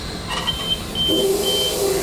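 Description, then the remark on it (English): Short, high electronic beeps repeat at intervals over a steady low engine rumble inside a train locomotive cab, with a lower sustained tone joining partway through. Nobody speaks. “That's nothing to worry about, that beeping sound.”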